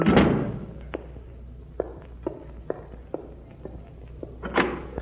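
A door bangs shut with a solid thud, shut against the sound of drums, followed by a series of light, evenly spaced footsteps and another dull knock near the end, with no talking.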